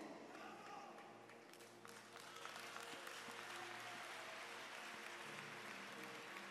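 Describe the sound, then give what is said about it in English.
An audience claps steadily in a dense, continuous wash of applause that swells slightly louder midway and holds, with faint voices and a low hum beneath. “You should be clapping because a miracle is coming your way in 2024.”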